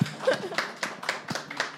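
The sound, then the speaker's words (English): Brief, scattered clapping from what sounds like a small group, with irregular sharp claps that fade after a couple of seconds; a round of applause given as a shout-out to the IRS after becoming an arts nonprofit. “Right, round of applause.”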